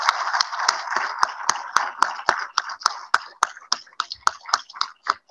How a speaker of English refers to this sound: If our board and staff members could please stand up, please, please, please, just stand up where you are. Please, everyone, give these folks an amazing round of applause.